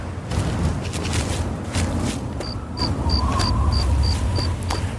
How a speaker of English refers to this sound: I hear buzzing. Maybe it's a bloat. Maybe a bloat fly is trailing me.